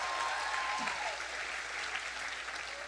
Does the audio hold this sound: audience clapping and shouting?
yes